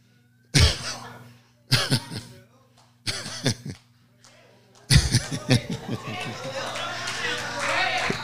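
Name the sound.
person coughing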